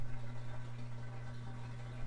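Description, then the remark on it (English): Steady rushing water runs continuously from a washing machine under a low mechanical hum. The sound stays even and fairly quiet throughout, with no voices. “And now it's and you can hear the water running from the washing machine.”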